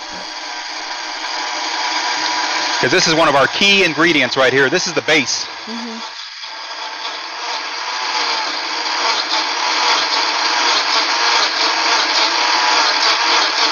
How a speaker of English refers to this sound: Put them in the blender. So there we go. We put our black beans and our tomatoes in the blender. And away we go. Just going to let it chew it up.